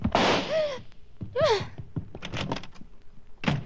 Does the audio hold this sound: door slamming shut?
yes